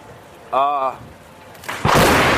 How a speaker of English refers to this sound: and then the lightning bolt happens